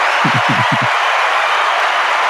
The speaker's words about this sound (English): Look at that. I have a soundboard, right? I have claps ready. It's the first time I ever used it.